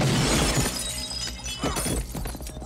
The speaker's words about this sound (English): Yeah, Kevin blasts them through the window. Blast him in a classic, like, shotgun through the, you know, curtained glass scene.